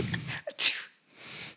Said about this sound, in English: So, so it sounds like a baby sneeze. We'll cut that out. It sounds like a sneeze.